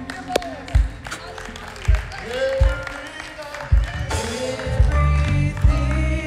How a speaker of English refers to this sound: Let's just give God a round of applause.